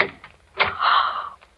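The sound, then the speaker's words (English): The door of room 421 is pushed open, starting with a soft knock of the latch and then a drawn-out creak of the hinges that lasts under a second, with no voices. “His door's open, too.”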